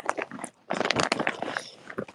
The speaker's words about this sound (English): Bro, Asuka, what is you munching on over there?